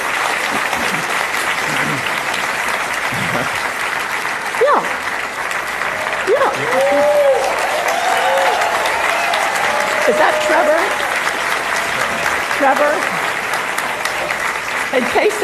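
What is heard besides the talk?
audience applause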